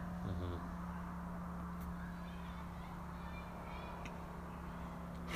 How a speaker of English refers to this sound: Listen to that car.